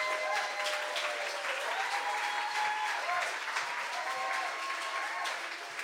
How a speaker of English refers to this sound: So please give a big round of applause